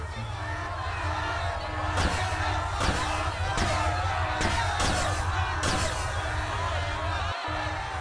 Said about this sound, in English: You hear horrific screaming. That's terrifying. And he just kind of keeps on fast-forwarding it. There's about 2 days worth of screaming. You can't make out very much other than that. It's a variety of languages.